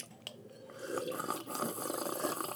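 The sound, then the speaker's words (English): Drinking water pours steadily into a glass, a continuous splashing gurgle that rises slightly in pitch as it fills, with no voices over it. “We should wash it down with some water”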